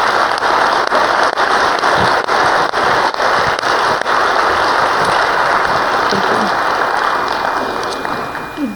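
An audience at a morning gathering applauds loudly and steadily for a woman who has just shared her story, a dense wash of many hands clapping that holds for nearly nine seconds before easing off slightly at the end.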